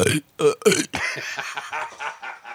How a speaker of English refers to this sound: Dude, that one burp you did. I think I may have highlighted it in gold. Yeah, it's in gold.